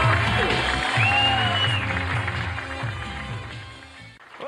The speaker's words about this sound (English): Nice round of applause, Frank Prinze.